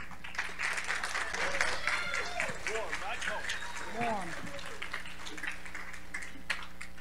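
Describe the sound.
Steady applause from an audience, a dense wash of clapping with cheering voices rising and falling through it, continuing for several seconds.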